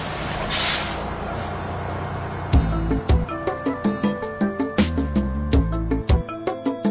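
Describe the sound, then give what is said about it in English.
A bus pulls in with a long, loud hiss of air brakes, then low rumbling as a steady, rhythmic musical beat takes over. No one speaks. “Here comes the bus.”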